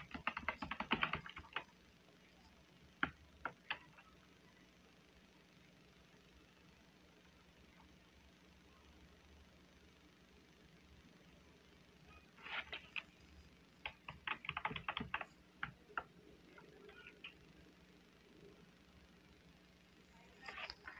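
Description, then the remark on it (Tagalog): Bursts of typing on a stiff computer keyboard, with sharp, clacky keystrokes in uneven clusters, separated by pauses, over a low steady background hum. Moderately loud, no talking. “Sorry, yung ini ng keyboard ko. Kasi parang stiff ng keyboard ko. Kaya parang hirap mag-type.”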